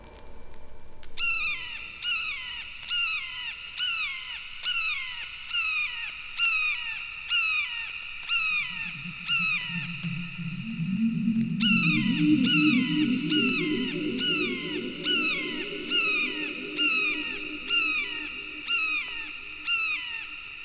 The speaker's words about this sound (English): Red-shouldered hawk.